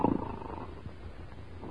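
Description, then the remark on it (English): Someone, sound asleep, snores: a low, rough snore opening with a rapid fluttering rasp that fades into a quieter, breathy rumble. It is brief and moderately soft, with no talking. “He's so sound asleep, he snored.”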